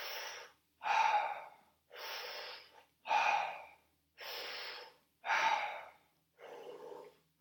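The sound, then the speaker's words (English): Deep, rhythmic connected breathing, with about seven strong, airy breaths alternating between inhales and exhales in a steady continuous cycle. There is no talking, and only brief pauses between breaths. “And let go into the last round of connected breathing.”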